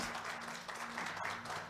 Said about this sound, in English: Can we give her a hand clap?